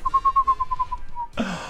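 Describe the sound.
A person imitates a spooky owl with a quick string of about ten wavering, whistle-like hoots at a steady mid pitch, then breaks off into a short breathy burst.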